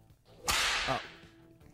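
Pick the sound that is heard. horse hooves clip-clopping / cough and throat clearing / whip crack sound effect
whip crack sound effect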